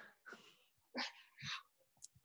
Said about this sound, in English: Glennie, come here because you have to speak to David. So a famous man. Come here, little puppy.